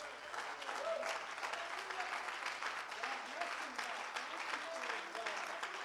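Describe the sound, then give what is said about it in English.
Sustained applause from a large church audience, many standing, honoring their pastors' 26th pastoral anniversary, a dense, steady patter of many hands clapping at an even loudness for several seconds, with faint voices mixed in. “But I think we need to give them a round of applause right now.”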